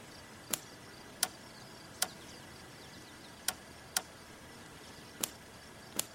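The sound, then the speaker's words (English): A van makes a series of sharp, dry clicks as it is hotwired by tapping two black wires together under the steering column, seven in all at uneven intervals over a faint background hiss, with no voices. “I tapped them together. The car made a clicking sound.”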